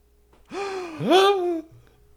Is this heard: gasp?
yes